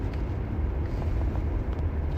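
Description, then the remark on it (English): A steady whooshing rumble of a car heater fan switched on because it is cold, in a car in a ferry parking lot, heavy in the low end with a constant airy hiss, running evenly without pause and with no voices. “Let me put the heater on because it's cold.”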